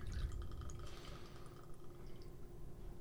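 Two ounces of Kirkland Premium vodka pour steadily into a glass for a cocktail for about three seconds, a soft continuous trickle with faint clinking, fairly quiet, no talking.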